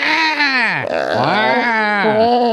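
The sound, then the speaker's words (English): A person vocally imitates a goat's wavering, almost human-sounding bleat, a loud, warbling cry with sliding pitch that dips low and rises again over a couple of seconds. “Have you seen those videos of goats where they sound almost human and they're just like”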